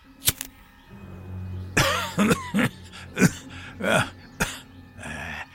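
A harsh, hacking coughing fit from a man smoking a cigarette, fairly loud: one sharp cough, a brief pause, then a rapid run of about seven raspy, chesty coughs, with no talking.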